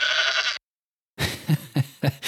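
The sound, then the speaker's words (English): A goat bleat sound effect used as a sting: two bleats with a brief silent gap between, the second call breaking into a rapid, wavering series of pulses; loud and on its own with no talking. “A mini-series that also features this podcast's first ever sting called How to be the post-college goat.”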